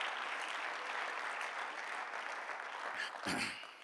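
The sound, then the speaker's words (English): An audience claps their hands to the Lord in dense, steady applause, a continuous crackling wash of many hands that holds fairly even throughout, with a brief louder flourish near the end. “Why don't you clap your hands to the Lord if you believe that right now?”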